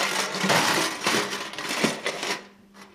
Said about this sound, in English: Before falling into some dustbins.